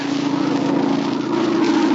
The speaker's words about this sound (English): It's a plane, all right. It must be going to land near here. It sounded mighty low. Just above the trees.